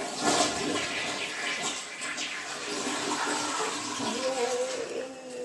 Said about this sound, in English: I keep the butts. And I'm just going to have to flush those down too. So let's start flushing them down. Let's start flushing them down. Flushing them down the toilet.